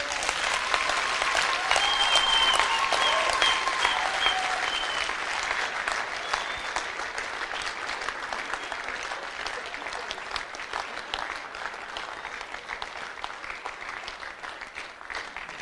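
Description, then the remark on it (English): Sustained applause from many people clapping their hands, a dense, steady patter that runs the whole time, loudest at the start and easing off slightly toward the end, with no speech over it. “I thought you were clapping your hands.”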